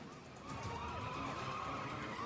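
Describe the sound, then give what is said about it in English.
Tires squeal and skid over a steady roar of car engines in a film car chase, with wavering screeches sweeping up and down as the cars race round in circles, loud and continuous throughout. “It is a damn good car chase.”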